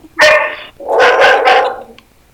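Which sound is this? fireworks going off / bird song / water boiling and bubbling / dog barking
dog barking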